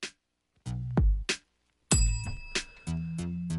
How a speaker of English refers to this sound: The bell makes a triumphant return.